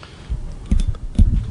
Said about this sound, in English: Man. What are you doing? Are you typing? Yeah, I was responding to Drew Downs.